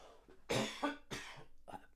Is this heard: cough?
yes